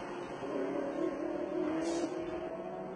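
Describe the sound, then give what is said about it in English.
The top two racing cars howl through Eau Rouge at high revs, a steady, buzzing roar that swells briefly in the middle before settling, loud, with no voices. “And through Eau Rouge go the top two. It's all about these two cars now.”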